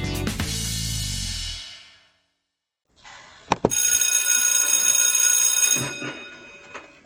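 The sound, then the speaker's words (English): A bright electric bell rings loudly, followed by a pause of silence and then a second burst of shrill, sustained ringing with a couple of sharp clicks, fading out at the end; it cues the chat segment of the show Chatting from the Word. “Now, when you hear the bell, you know it's time for our chat.”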